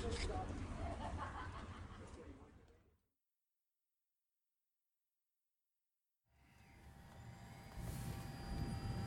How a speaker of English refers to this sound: On a rainy afternoon, an Airbus H-125 helicopter takes off from the Telluride Regional Airport. The helicopter is the newest member of the San Miguel County Sheriff's Office to be used for search and rescue missions and fire spotting.